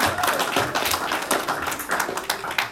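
A crowd applauds steadily, many hands clapping at once in a dense, continuous patter of sharp claps, fairly loud and sustained throughout with no voices standing out.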